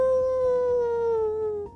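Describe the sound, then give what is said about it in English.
A human voice imitates a jackal howl: one long, loud, steady high-pitched note that slowly slides slightly lower before cutting off. “Well, then all of a sudden, those jackal sounds got very, very close. Ow! Ow!”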